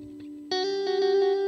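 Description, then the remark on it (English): An electric guitar holds a bright, sustained note soaked in heavy delay, with echoing repeats pulsing rhythmically over the tone. The effect is loud, and no one speaks. “Big delay.”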